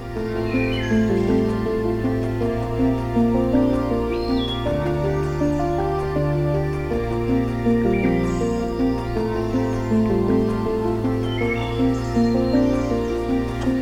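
A wood thrush sings short, fluty phrases spaced a few seconds apart over a steady low droning hum that runs through the whole recording, on a hiking trail near the Pine Tree Harbor trailhead. No one speaks.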